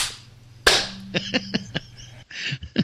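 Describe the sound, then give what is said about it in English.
A loud, sharp slap cracks out near the start, followed by a quick run of lighter smacking hits and a few more scattered ones, over a low steady hum with no talking. “have either of you ever had the urge to slap the crap out of me?”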